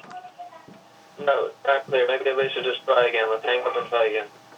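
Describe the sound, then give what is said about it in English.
A garbled, muffled voice comes through a thin, band-limited conference-call phone line in choppy bursts, the words impossible to make out, with a faint hiss in the pauses. “No, not clear. Maybe they should just try again.”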